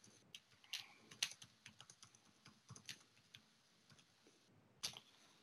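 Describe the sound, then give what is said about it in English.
Irregular computer keyboard typing as a person slowly types a search, a scatter of soft key clicks with a few sharper taps, uneven and hesitant in rhythm, quiet with no talking. “Excuse my slow typing.”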